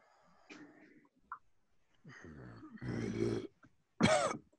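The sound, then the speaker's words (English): A man coughs up muddy water while being slapped on the back: several hacking, sputtering coughs in uneven bursts, with a long harsh throat-clearing heave and a final loud cough, separated by brief pauses. “And I think he just sort of coughs up a whole bunch of kind of muddy water.”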